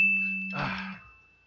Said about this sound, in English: Is your phone now going to play every time it does that? It's just a thing.